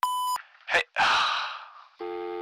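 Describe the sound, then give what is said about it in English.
A short, bright voicemail beep opens, followed by loud breathy gasps or exhales, then a second, lower-pitched electronic tone holds steadily until the end. “Leave a message after the beep.”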